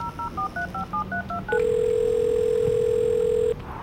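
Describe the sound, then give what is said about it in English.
A phone calls KT: a rapid string of about nine touch-tone dialing beeps, then a single steady ringing tone that holds for two seconds before cutting off. The sounds are clear, with no voices. “Phone, call KT.”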